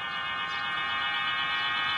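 Pigeon whistles, tiny flutes of bamboo or gourd sewn onto the feathers of a flying flock of homing pigeons in Beijing, produce a steady, eerie chord of many overlapping high tones, sustained without a break at an even, moderate loudness with no voices.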